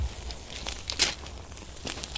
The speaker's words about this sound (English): Mm-hmm. You can hear them in the fire crackling away. Great. It's a good sound. Gorgeous, isn't it? That crackle, the hiss of the sticks burning, the steam of the fish, and the shoreline there just breaking, really quite nice.